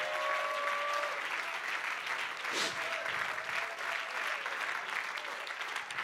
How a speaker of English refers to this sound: The Lord is a superseding God. If you believe that, would you clap your hands unto the Lord?